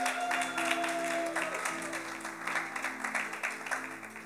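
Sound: church round of applause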